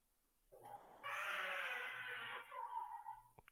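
A baby boy crying faintly in the background, a short whimper followed by a strained, high-pitched wail that holds for over a second before breaking into choppier sobs. No talking.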